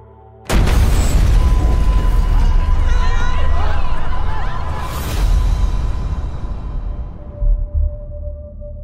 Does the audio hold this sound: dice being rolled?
no